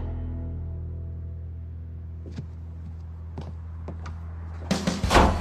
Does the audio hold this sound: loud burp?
no